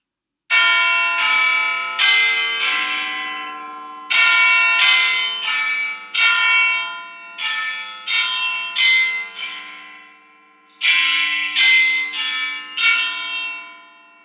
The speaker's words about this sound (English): Okay, so we summoned Big Ben. This allowed us to go back in time and make the phone call.